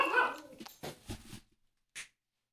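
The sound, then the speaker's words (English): A small dog, startled and wanting attention, gives a few quick, excited yelps and whines, with a short rough bark burst in the middle and a final sharp yip after a brief pause. “Got little Fudge, the dog, the sweet official Sweet Jesus Radio dog. Freaking the fuck out.”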